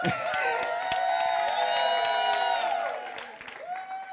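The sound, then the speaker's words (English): A church audience at Life Church VA claps and cheers steadily as a hand clap of praise during a morning service, sharp scattered claps mixed with high whoops and shouting voices, the loud applause holding for about three seconds before thinning out. “Thank y'all for giving them a hand clap of praise this morning.”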